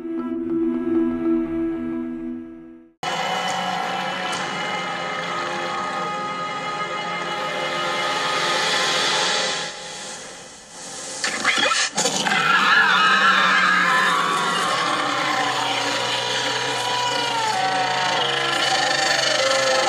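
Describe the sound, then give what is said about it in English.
A dragon, Maelys, Rhaenys's dragon, screams in the faces of Alicent, Otto, Aegon, Aemon, Helaena and Sir Criston: a low tonal hum gives way to a sudden, loud, harsh roar that rasps on for many seconds, dips briefly, then returns with shrill, wavering screeches. “Just heard, Rhaenys's dragon, Maelys, screams in Alicent, Otto, Aegon, Aemon, Helaena, Sir Criston, scream, the dragon screams all in their faces.”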